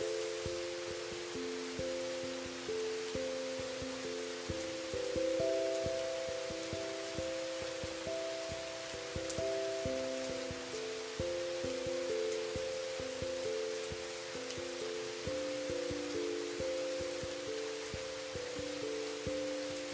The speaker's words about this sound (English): You are serene and calm and cleansed with that gentle rain washing down. Feel it cleansing you, and maybe your pets too